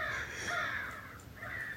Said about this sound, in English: Except for the crows, of course. The crows are being the crows.